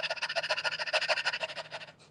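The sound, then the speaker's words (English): A person does a doggy-pants breathing exercise, imitating a dog's panting with a rapid, steady string of short breathy huffs, fairly loud, around fifteen quick breaths in about two seconds with no talking. “If you can't hear that over the microphone, I'm sounding like a dog. Taking in air in, putting in air out.”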